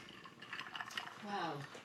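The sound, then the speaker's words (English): Ice cubes clink and rattle against a glass in a quick cluster of bright taps, with a brief murmur of a voice near the end. “It's got that nice clink in the container.”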